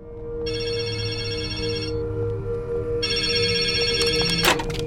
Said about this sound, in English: We go back to Alice's team and phones keep ringing around them. It's weird. So they answer it.